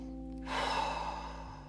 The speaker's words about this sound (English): When you get up in the morning, put your 2 feet on the floor, take a breath, nice deep breath.